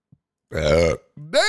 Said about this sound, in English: Damn. Didn't even do the shot yet. Usually I'm burping after the shot.